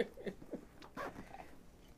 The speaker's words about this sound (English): This zipper's, like, halfway open. Please, yeah, zip it up, please.